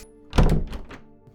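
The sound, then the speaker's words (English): A chair, flipped in the air, lands on the floor with a loud, heavy thunk, followed by a couple of quieter knocks as it settles. No one speaks. “You did it several times, and then you wasted all our time trying to flip the chair and land it on its legs.”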